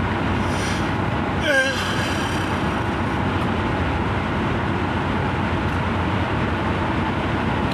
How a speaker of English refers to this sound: Nice Subaru. Yeah. Subaru. Oh, some guy went by me in a Subaru. A blue one.